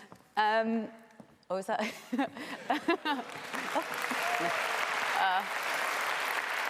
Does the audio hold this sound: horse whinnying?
no